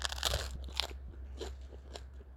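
Crunchy bites into crusty sourdough bread made with wheat, rye and spelt and topped with sesame, poppy and fennel seeds, straight out of the oven: a cluster of crackly crunches at the start followed by a few softer, spaced-out crunches as chewing continues, with no talking.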